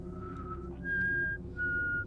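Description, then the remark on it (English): A person whistles a simple tune of three held notes at shifting pitches, with brief pauses between them, over a steady low background rumble. “It was definitely a person whistling a tune. It went up and down in different notes, playing the same tune, and would pause as if someone was taking a breath.”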